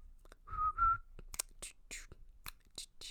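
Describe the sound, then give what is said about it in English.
A person whistles a short, clear two-note tune for about half a second, then breathy, whispery hisses and soft mouth sounds follow in quick bursts. “Well, no, he's got one where he whistles. Okay. Where there's a whistle in the song.”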